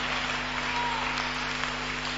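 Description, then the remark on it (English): An audience claps steadily, a dense wash of many hands blending into continuous applause of even loudness, with a low steady hum underneath and no clear voices. “Those who are clapping, may you receive some angelic blessings.”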